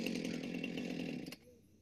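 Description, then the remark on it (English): A chainsaw in a movie drones loudly and steadily, then abruptly cuts off around a second and a quarter in, leaving a faint low hum behind. “Oh, I guess he's shut off his chainsaw.”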